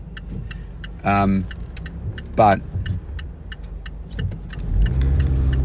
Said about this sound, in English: Sorry, I was just having to wait for the traffic there.